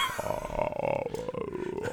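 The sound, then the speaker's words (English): Mongolian throat singing: a deep, growling drone held for two seconds, with a brighter whistling overtone gliding slowly up and down above it. It is loud and steady, with no talking. “Mongolian throat singing.”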